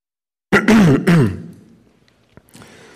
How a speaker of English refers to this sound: If there's plenty of coughs and other disturbances from my body, then you'll forgive me.